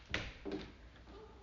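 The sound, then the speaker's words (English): A door creaks open quietly, starting with a short scrape and a high squeak, then a lower groan about a half-second later as it keeps moving. No one speaks. “I keep saying I was going to get something for the doors.”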